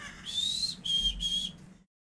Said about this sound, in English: Yeah. There's like a black-capped chickadee and a chestnut-backed chickadee in there. Black-cap goes, they say chickadee-dee, right? Mm-hmm. And then your chestnut-back says cheeseburger.